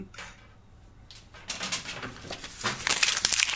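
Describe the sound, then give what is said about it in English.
Fancy paper crinkles and rustles, starting soft and growing into a steady run of crisp, crackling handling noises that get louder toward the end, with no one talking. “Fancy paper.”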